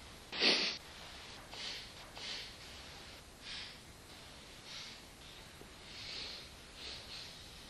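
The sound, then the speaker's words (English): Sniffing: one sharp, loud sniff, then a steady series of about ten softer, short sniffs at a gentle rhythm, as a person with eyes closed smells a stone held near the nose. “Keeping your eyes closed, sniff your stone.”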